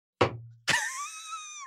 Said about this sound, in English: You just slammed your coffee down.